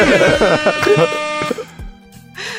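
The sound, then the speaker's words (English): A voice does a harsh, droning buzzer imitation lasting about a second and a half, loud, before it fades into quieter background noise. “do like a buzzer sound.”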